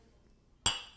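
glasses clinking

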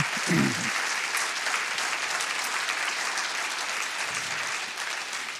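audience clapping

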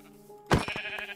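sheep bleating

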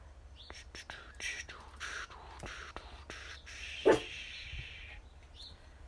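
puppy barking

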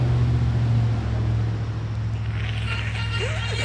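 road traffic passing by

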